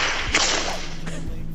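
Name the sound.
whip crack sound effect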